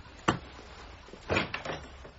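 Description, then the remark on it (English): A door opens: a sharp click of the latch, then a short pause and a cluster of knocking, rattling handling sounds as it swings. No voices. “Ah, there's someone at the door.”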